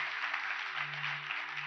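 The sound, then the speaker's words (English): An audience at Passionate Life Church claps together in a dense, steady wash of applause that holds at a constant level, with a low sustained tone humming underneath. No one speaks. “Come on, let's give them a hand clap today.”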